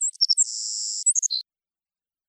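A songbird sings a short, high phrase: a few quick chirps, then a sustained buzzy trill, then several brief notes ending on a lower whistle, followed by silence.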